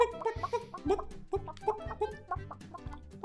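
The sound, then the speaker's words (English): Several voices imitate chicken clucking at once, overlapping in a busy, steady stream of short clucks and bawks over about three seconds, with no ordinary talk. “I'm impressed with everybody's chicken noises.”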